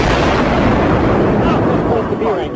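A loud, sustained explosive roar with heavy low rumble and crackling noise, filling the whole moment without a clear single bang.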